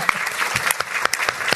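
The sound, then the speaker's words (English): An audience applauds at a City Club event, a dense, steady patter of many hands clapping at once, fairly loud, filling the short moment without any voices. “So, give us all a round of applause.”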